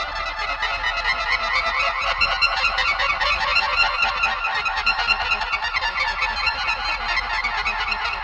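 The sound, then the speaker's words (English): The Star Trek transporter sound effect, played by Kuckerly on his Magic Box organ: a dense, shimmering cluster of high electronic tones that flutters and sparkles steadily for about eight seconds, loud and unbroken, with no voices. “And those famous transporter tones, again featuring Kuckerly at his Magic Box organ.”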